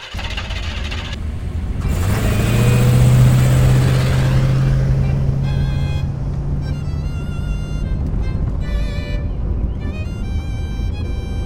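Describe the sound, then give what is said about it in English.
The engine of a truck loaded with extra-strength bubble wrap turns over and revs up, then settles into a steady rumbling drone as it drives to Vicksburg Marine Park and Game Farm, with some high tonal sounds layered on top toward the end. “When the truck was loaded, Benoit and Treasure drove to Vicksburg Marine Park and Game Farm.”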